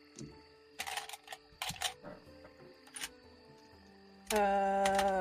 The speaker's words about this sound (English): I don't know what you're doing. Pulling out dice.